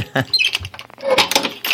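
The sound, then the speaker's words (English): Keys jingle and clink in a few irregular, bright metallic bursts, with small rattles and scrapes between them over a couple of seconds. “Oh, I hear keys.”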